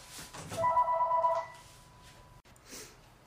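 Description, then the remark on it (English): A single burst of a telephone ringing, a bright warbling electronic trill that is fairly loud, followed by a faint lingering tone and quiet background noise with no talking. “Anyway, so what were you asking when the phone It's hit?”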